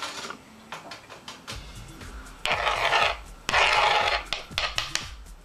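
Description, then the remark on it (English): One medium-sized carrot being grated, with repeated rasping, scratchy strokes in a steady rhythm. Two longer, louder stretches of grating stand out in the middle, and no one speaks. “Next, I grate a carrot, one medium-sized carrot, so that I have a half a cup of carrots.”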